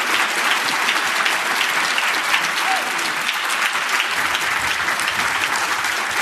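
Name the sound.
audience applause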